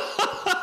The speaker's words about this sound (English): Made you cough.